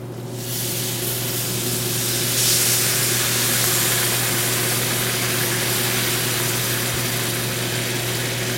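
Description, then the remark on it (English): A cup and a half of chicken broth is poured into a hot cooking pan, setting off a loud, steady hiss and sizzle that swells after the first half second and holds, over a low constant hum, with no talking. “While that's working there, I'm going to go ahead and put in a cup and a half of chicken broth.”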